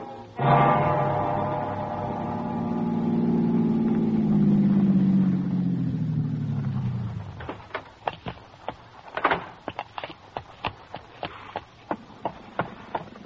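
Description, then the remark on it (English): A rented car's engine roars up loudly, then its pitch slowly sinks as it drives off and fades after several seconds, leaving a scatter of sharp clicks and knocks. The car is travelling from Los Angeles to Newport Beach. “rented car travel from Los Angeles to Newport Beach and the heart of the trouble.”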